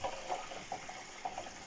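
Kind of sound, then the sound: household object, tap water running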